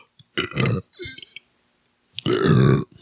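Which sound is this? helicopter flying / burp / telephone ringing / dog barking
burp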